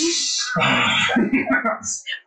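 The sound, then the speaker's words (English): A person loudly imitates a long, drawn-out sniff as if sick, followed by throaty, sickly vocal noises and a brief high-pitched squeak. “You'd be taking that long sniff like you sick.”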